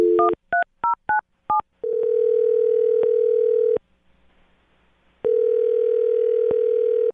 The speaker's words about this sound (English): All right, I'm going to dial him right now, get him on the phone, and see if we can find out why he's not getting back to you, okay?